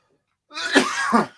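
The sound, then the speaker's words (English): Two harsh, sputtering coughs in quick succession, fairly loud, from a person who choked on water, with a raspy breathy stretch between them and no talking. “Supposed to choke on the water.”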